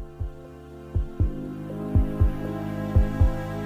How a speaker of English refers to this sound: Starts with a heartbeat. This is real ASMR-y.